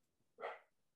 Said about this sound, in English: My dog's barking and it's, I hear him. It's vicious. So loud. He misses me. Archie.